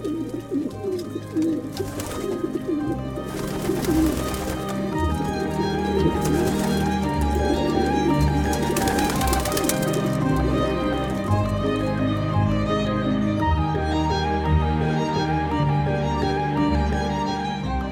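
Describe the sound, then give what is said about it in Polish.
A flock of pigeons coos steadily, many throaty, rolling calls overlapping into a continuous murmur with no one speaking. “Jakby nie było gołębi, to pieron by strzelił fałpę, a tak gołębie są, to nie trzeba pieronochron robić.”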